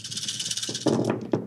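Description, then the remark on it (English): Dice tumble and clatter across a tabletop in a quick burst of sharp rattling clicks, with a final knock as they settle, rolled for a stealth check in a tabletop role-playing game. Moderately loud over a faint steady hiss. “Yeah, go ahead and roll a daunting stealth check with 2 challenge dice.”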